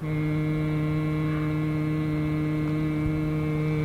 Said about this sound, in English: Near the Boise foothills, the river ambles through the pastures and cottonwood groves. The late afternoon sun gives the marsh grass a soft focus, and a blizzard of gnats rises up near the water's edge where a man is humming.